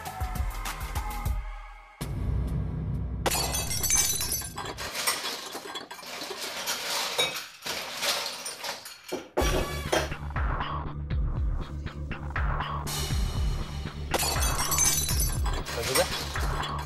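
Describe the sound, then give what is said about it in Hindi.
Metal utensils fall, crashing and clattering in several bursts, bright clanging rattles tumbling over one another, with a low rumble underneath and brief pauses between the falls. “पीछे से बर्तन गिरने की आवाज आ रही है।”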